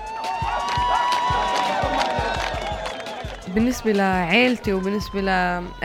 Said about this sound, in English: fans cheer.